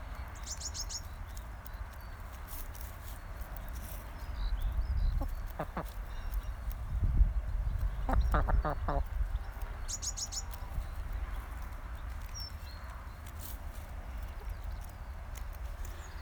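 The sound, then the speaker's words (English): Hens cluck in short bursts in a hen garden field amid a low outdoor rumble, with brief bird chirps overhead at the start and again later. The clucking is intermittent, with quieter stretches between. “I'll leave you with the sounds of the hens.”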